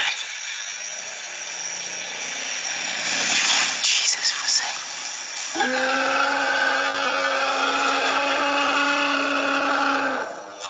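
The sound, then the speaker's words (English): An elephant trumpets: after several seconds of rough, breathy rumbling, a loud, brassy, sustained blare rises sharply and holds for about five seconds before cutting off. “That's an elephant.”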